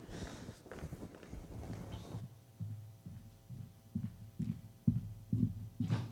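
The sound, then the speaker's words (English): A scripture reader's footsteps thud steadily across a hollow-sounding floor as they walk up to the front, roughly two per second, following a short burst of room noise at the start. The steps are moderately loud. “I like I can hear my footsteps coming up here.”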